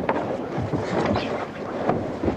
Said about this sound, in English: Boat is lying at an angle. The crew are sitting out on the weather rail, trying to keep her balanced. Chopping around the place here.